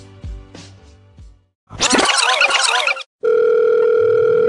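A telephone ringing tone, calling a song's hotline, hums steadily and loudly at the end, after a few soft plops and a burst of harsh, crackly noise. No one speaks.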